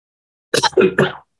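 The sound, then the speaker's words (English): A short cough in three quick, loud bursts, harsh and partly voiced, lasting well under a second before silence returns. “You can cut out that cough.”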